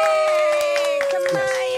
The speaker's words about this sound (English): All right, y'all. We got a special guest in the building. Let's give a hand, round of applause